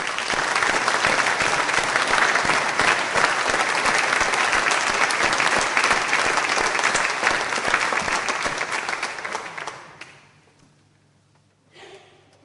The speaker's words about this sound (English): Maybe we just take a moment to give them a round of applause and thank them for all the ways in which they've served these last 3 years.